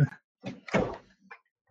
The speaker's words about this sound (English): Sorry, my wife walked in the door. At first, I got spooked because my side door just opened from the wind of her opening her door, and I was like, "There's a ghost!" But it wasn't. It was just my wife.